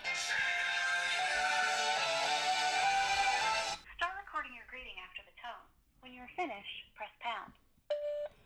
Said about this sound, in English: Phone ring